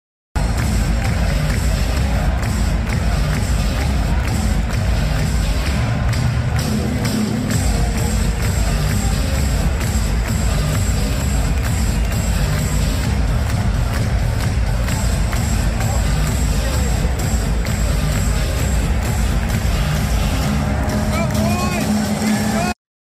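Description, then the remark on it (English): A large crowd of students roars continuously in a packed stadium at an ASU game, a dense wall of cheering and shouting voices that stays loud and steady from start to finish. “it was really cool to see all those students out there. We have a video of them and it is electric.”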